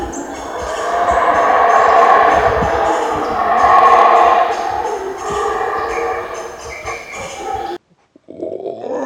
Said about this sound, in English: And then it just started this fucking orchestra of howler monkeys.